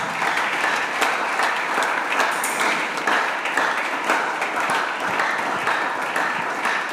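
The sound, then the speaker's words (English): An audience claps steadily to celebrate Jesus, dense overlapping applause that stays loud and even throughout, with no voices standing out. “This clapping is to celebrate Jesus.”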